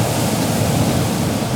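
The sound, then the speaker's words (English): A steady, loud roar of ocean waves and howling wind as a sailing ship cuts through the waves, a dense continuous wash of noise with no pauses and no voices. “The pirate ship gutted through the roaring waves, all her sails straining under the howling wind.”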